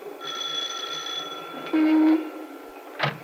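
The doorbell of a home rings on a sunny afternoon with a steady, bright metallic tone held for about two seconds, joined briefly by a louder low buzz, then a short sharp knock-like clack at the end.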